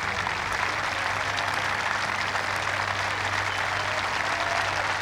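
Sustained applause from a large outdoor golf gallery at the 18th green of the 149th Open Championship as an amateur golfer walks down the 18th to close out his round, a steady dense wash of clapping that holds evenly throughout with no talking over it.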